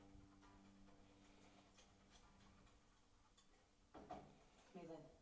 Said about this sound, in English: Hey! There was a knock!